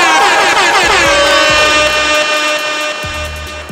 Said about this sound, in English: I need a freaking applause and a freaking horn. Where's my applause and where's my horn?